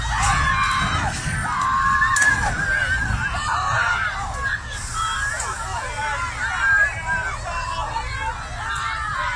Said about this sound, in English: Around 40 animal rights campaigners were gathered there and after it happened they started chanting